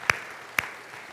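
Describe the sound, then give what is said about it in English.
An audience applauds a Bible teacher at a camp: two sharp, distinct hand claps about half a second apart stand out over a soft, steady hiss of scattered clapping, like the start or tail of a short round of applause. No one speaks. “Give him a round of applause too as well.”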